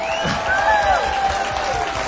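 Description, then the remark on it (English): An audience breaks into sustained, steady applause for a live band, a dense wash of clapping mixed with scattered cheers and whoops that holds at an even loudness from start to finish. “Can we just give them one more big round?”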